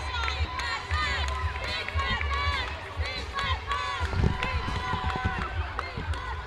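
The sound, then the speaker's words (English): A large crowd cheers and shouts loudly after Bath United wins the game, many overlapping voices forming a dense, steady roar that keeps going without a break, with shouts of "big bad Bath". “And that's the game. We have a winner, folks. Bath United. So the loud cheers.”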